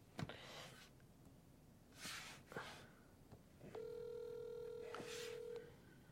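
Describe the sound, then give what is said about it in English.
A phone call being placed again to reach someone: a few short bursts of noise and clicks, then a steady electronic ringing tone sounds for about two seconds, fairly clear, with no one talking. “We're going to call him again.”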